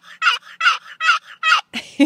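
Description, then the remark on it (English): A turkey call produces a loud run of rattling gobbles, five quick pulsing bursts followed by two shorter, rougher yelps, with no voices. “Don't forget the turkey calls.”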